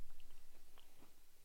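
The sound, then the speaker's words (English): Quiet chewing of just the chocolate wafer of a Nabisco cookie, without the cream, with small crunchy bites and short clicks repeating over a second and a half, no talking. “I'm going to have just the wafer.”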